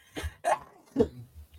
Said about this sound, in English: Pardon me, I'm going to sneeze.